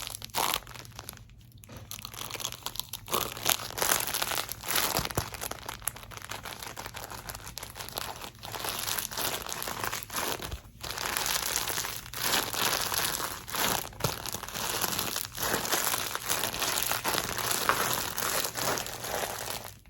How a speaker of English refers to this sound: So this is Squishy and Crinkly. It's a dog toy, but before I give it to my dog, I'm gonna use it. So check this out.